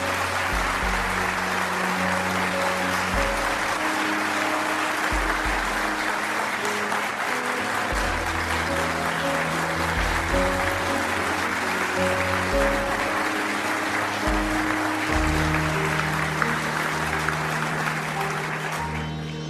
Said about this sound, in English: Yeah, you can clap for that.